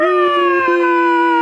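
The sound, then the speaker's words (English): A single voice imitates a roaring crowd welcoming a guest, with one loud, sustained, steady cheer-like howl lasting about a second and a half, with no other sounds. “and the crowd roars again.”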